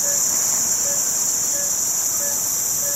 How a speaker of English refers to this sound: And then suddenly the sort of cacophony of the tropical forest at night hits you.